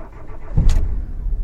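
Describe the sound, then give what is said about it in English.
A car engine catches and turns over, with a short burst of noise at ignition settling into a steady low idle rumble. No one speaks. “The car started right up, and we laughed as we neared the city.”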